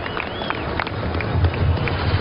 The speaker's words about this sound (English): Cheers from the crowd.